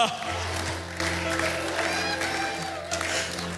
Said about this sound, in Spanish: No, dejen de gritar.